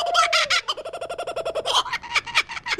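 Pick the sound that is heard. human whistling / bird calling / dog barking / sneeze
bird calling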